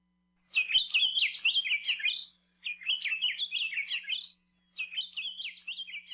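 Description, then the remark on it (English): An Akiapolaau, an endangered, large, bright yellow Hawaiian forest honeycreeper, sings three bright, rapid warbling phrases separated by short pauses, clear against a quiet background with no one speaking. “Akeapola owl are large, bright yellow honeycreepers that act like woodpeckers.”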